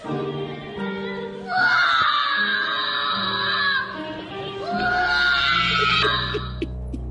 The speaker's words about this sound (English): You think that's the same kid that screams shut the blank up at the teacher? It might explain a few things. They both seem to have the same temperament.